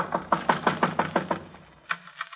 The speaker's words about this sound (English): At one end is a small wooden shed big enough for a half a dozen garbage cans with a cheap padlock on the outside. Just in a hunch, I go over to the shed and knock. Anybody home?